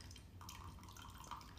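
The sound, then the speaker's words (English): A thin stream of liquid pours from a kitchen measuring cup and trickles steadily onto a spoon, quiet, with faint dripping and no voices. “I thought, you know, maybe the podcast gods would be here for us, but you gotta pour the liquid over the spoon.”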